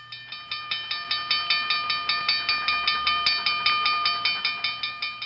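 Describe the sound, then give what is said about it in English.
A railroad crossing bell sound effect, played as an alert from a virtual Stream Deck button, dings rapidly and steadily, each bright metallic strike ringing briefly before the next, repeating about five times a second with no voices. “So in case you can't tell, that is like the dinging alarms for like a train crossing.”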